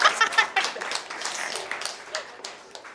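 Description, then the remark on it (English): An audience at an art show applauds with a dense patter of many hands clapping, strongest at the start and then thinning gradually, with a few murmured voices mixed in. “Feel free to clap.”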